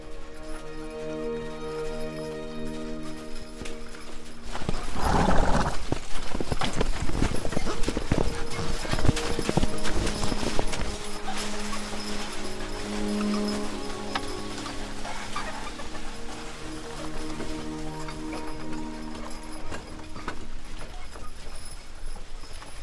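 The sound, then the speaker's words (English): Horse hooves clip-clop in a steady walking rhythm, moderately loud, with a burst of louder clattering around the middle and faint ambient noise throughout; horses ridden in cold of 20 below zero through snow about 2 feet deep at Horse Prairie. “Well, we were horseback and it was cold, it was 20 below zero.”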